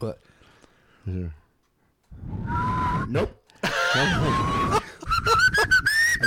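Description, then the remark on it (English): A person tries to whistle a tune, producing a few breathy, wavering whistled notes mixed with a lot of airy hiss, in short uneven bursts. “I'm the worst whistler in the world.”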